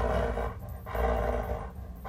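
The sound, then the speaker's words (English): A dog named Ace plays with a toy pig, making a loud, rough growling noise that runs almost continuously with a few brief dips. No one speaks. “The dog has a pig, y'all, so that's what you're hearing. It's a pig.”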